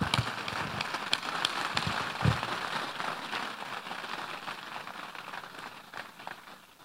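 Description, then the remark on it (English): An audience claps during a service, a dense, steady patter of many hands that holds at an even level for several seconds, with no voices heard over it. “If you want to clap, clap well.”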